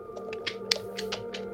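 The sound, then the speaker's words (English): A quick series of about seven or eight sharp mouth clicks, made by a person as vocal tics, at an uneven pace, fairly soft, over a steady low hum with no talking. “can you make the click sound? Like, is this a sound you make or what? Yeah, it's a sound.”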